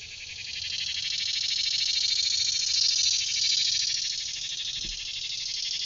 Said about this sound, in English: A cicada just flew up right next to me. I don't know if you can hear how loud he is, but he has come to add his wild and imperfect chorus to our conversation. You know, the cicada lives underground for many years, some up to 17 years.